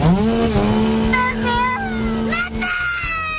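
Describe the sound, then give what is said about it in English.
A chainsaw engine, fired up by a hit-and-run driver who got out of his car and went over to a woman following him, drones loudly and steadily for a few seconds, its buzzing pitch holding even, while raised voices seem to overlap it before it cuts out near the end. “So she followed the hit-and-run driver, and she stopped when he stopped, and all of a sudden he got out of the car and went over to the woman who was following him and fired up his chainsaw.”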